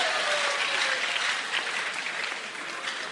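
A crowd applauds an 18-year-old young man for answering a question correctly, a dense, even wash of many hands clapping at a fairly strong level for the whole few seconds without pausing or building.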